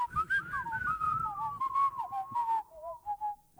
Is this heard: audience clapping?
no